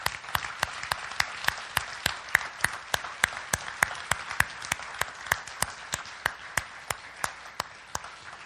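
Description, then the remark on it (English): An audience applauds for several seconds, a dense wash of hand claps with a steady, evenly spaced clapping beat cutting through it, applauding the volunteers who serve with kids and student ministries. No one speaks over it. “And so before we go any further, I want to applaud all of the folks that serve with our kids and with student ministries.”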